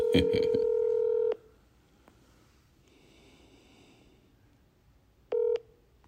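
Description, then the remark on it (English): A phone ringback tone of an outgoing call that goes to voicemail purrs loudly for over a second, falls silent through a long pause of faint background hiss, then starts a second ring near the end. “It's ringing, huh?”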